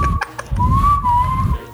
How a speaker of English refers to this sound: Run out of breath too quick though, man. Not when I'm whistling, man.